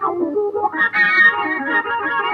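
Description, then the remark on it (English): A sustained organ tone plays over a lower clavinet part with wah, split across a single keyboard, its chords holding steady and bright after a brief lead-in of shorter notes. Fairly loud, with no talking. “Then up top, I got an organ.”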